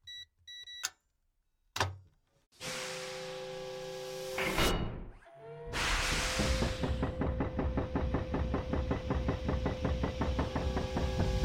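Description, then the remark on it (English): Short electronic beeps and a couple of heavy thuds, then a loud pressurized hiss followed by steady, rhythmic mechanical grinding and clanking as a massive vault door rolls open, loud. “I think I finally got the door control open here.”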